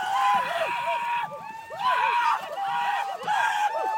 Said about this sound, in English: When the canoe comes ashore at the end of the day, supporters who follow along on land are there to cheer.